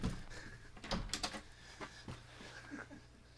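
Someone tries a locked door and cannot get in: a cluster of sharp clicks and rattles from the handle and latch, followed by a few scattered knocks, fairly quiet, with no talking.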